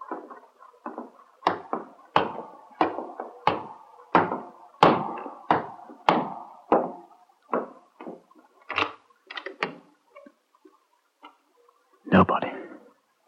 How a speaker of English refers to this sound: At last, I opened the door behind the counter and made my way upstairs.